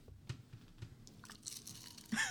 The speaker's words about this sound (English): Oh, that was that's so crunchy, dude. Some good chips.